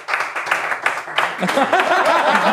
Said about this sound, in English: That's just the guy's clapping.